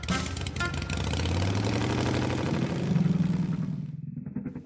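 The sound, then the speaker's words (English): A small scooter engine revs up, its whiny pitch climbing as it pulls away, then the sound thins out and recedes at the end. No voices are heard. “Then she took off down the scooter path that led to her Grammy's house.”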